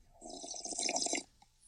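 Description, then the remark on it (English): A wet, airy slurp of hot Mocha Joe's deep, dark French roast coffee from a mug, lasting about a second, with a hissing upper layer over a gurgling lower tone. A small drip-like click follows before quiet. “Hang on, I got a slurp.”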